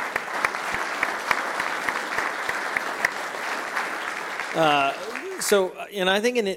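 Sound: conference audience applause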